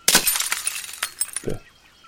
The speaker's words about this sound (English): At this point, I'll just throw the porcelain foot on the floor and smash it.